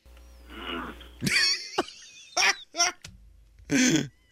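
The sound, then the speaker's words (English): A series of loud, strained vocal grunts and squeals bursts out, several short pained cries in quick succession, from someone stubbing a toe. “It's not a fart. It's the sound of me stubbing my toe.”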